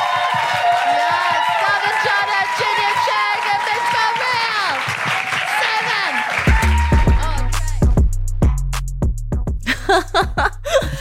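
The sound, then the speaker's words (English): An audience claps and cheers loudly for the night's acts at the close of a show, with whoops and shouting voices rising over the steady applause, before a thumping bass-heavy music track starts and carries on beneath the fading crowd. “A round of applause for the acts you see tonight.”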